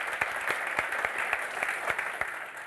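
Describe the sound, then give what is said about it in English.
An audience at a church gathering claps steadily, a dense patter of many hands with sharper individual claps standing out, sustained at an even level without voices or cheering. “But again, round of applause to these guys.”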